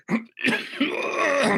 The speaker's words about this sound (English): Oh, my God. I really want this cough gone.